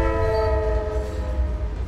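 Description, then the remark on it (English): A train horn blares loudly in sustained harmonic tones over the heavy low rumble of a passing train, fading slightly as it continues. “It's hard enough for a small group of people to slow down a speeding train full of passengers, let alone two of them heading in opposite directions with all kinds of momentum.”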